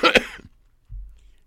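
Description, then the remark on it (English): A quick cough in two sharp bursts, loud and breathy, then a brief faint low rumble as things go quiet. “You know, on their first Super Bowl, I'm going to try to do this without coughing.”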